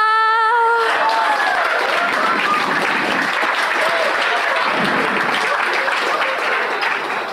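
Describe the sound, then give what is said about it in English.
A brief held, tonal voice note gives way to loud, steady audience applause at a comedy show after a staged fake-whipping bit with blood packets, a dense crackle of many hands clapping that carries on without letup for several seconds. “You guys clapped way more than they did.”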